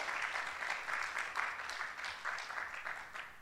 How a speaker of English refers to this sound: Give him a round of applause again